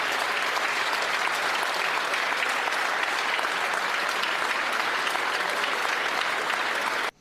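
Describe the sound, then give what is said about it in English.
A crowd claps and cheers steadily, a dense, loud wash of applause holding at an even level for about seven seconds before cutting off abruptly. “So, now we've seen what they're all cheering for.”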